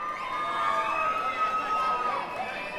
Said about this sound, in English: And the crowd cheered and whistled enthusiastically, encouraging her to go on.